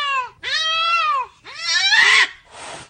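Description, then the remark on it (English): Three loud, drawn-out cat yowls, wavering up and down in pitch, come in quick succession, ending in a short breathy hiss-like burst. No talking. “I can just imagine you throwing the cat up in the ceiling fan.”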